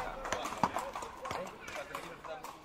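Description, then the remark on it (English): A mare's hooves clip-clop in a steady, moderately loud rhythm of sharp knocks, set over a busy background that sounds like low, indistinct voices. “And when someone asked what Edmund was praying about, Jeremiah said, it may be his mare that God would make her more serviceable. LOL, his horse.”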